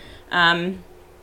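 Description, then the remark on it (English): A single cat meow, about half a second long, fairly loud, rising and then trailing off, with quiet around it and no one talking. “Some good news out of camp, and of course the cat has to make an appearance.”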